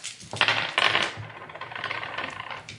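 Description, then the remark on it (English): Dice rattle and clatter across a tabletop as two players roll for resolve in a tabletop game, with two sharp bursts of hard clicking followed by a softer stretch of tumbling and settling. The sound is fairly clear, with no talking. “Alright, so both of you roll resolve at this point.”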